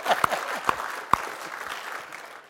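audience applauding

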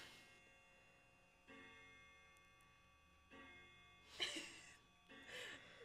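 clock ticking

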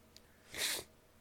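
sniffling

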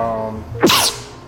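sneeze

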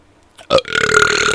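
burp

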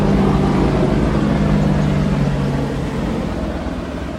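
helicopter flying overhead

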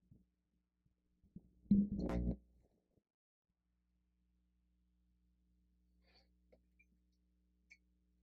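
coughing

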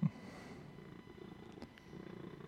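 cat purring

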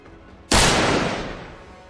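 gunshot sound effect

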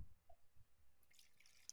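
liquid being poured

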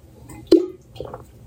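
water sloshing

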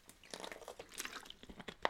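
drinking water

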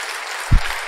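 audience applauding

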